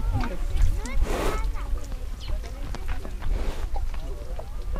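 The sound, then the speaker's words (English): A thin, slate-gray cow wades into a shallow spring pool used for drinking water, her heavy hooves sloshing and splashing in a few slow steps over a low, steady outdoor rumble. “A slate-gray cow, her ribs standing out far enough to throw shadow lines down her sides, walks into the pool of water at the spring.”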